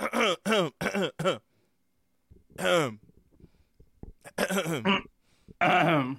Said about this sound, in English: cough, more coughing noises. Cough.